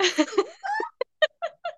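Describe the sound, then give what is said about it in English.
A new cat named Scuba vocalizes: one drawn-out, rough-edged call, then a quick run of four short, chirpy meows with brief gaps between them. “Yeah, we, my cat has come to say hello.”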